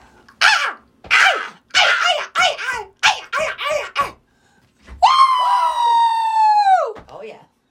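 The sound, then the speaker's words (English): A person's voice imitates bird calls: about nine quick, harsh caw-like squawks in a row, then one long, loud, sustained high call that drops off at the end. “Look at bird sounds and everything. Come on now.”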